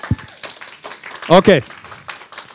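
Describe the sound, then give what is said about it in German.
An audience applauding for Jesus during a church service, with a steady crackle of many hands clapping and a couple of loud voiced cheers rising midway through the burst. “Komm, wir feiern den Herrn mal. Ein Applaus für Jesus.”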